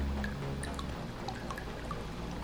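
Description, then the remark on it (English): Water drips and trickles steadily, with scattered bright plinks of droplets over a continuous low wash of running water, moderately quiet, with no voices. “So you walk fairly slowly up to the point where you can kind of hear the water.”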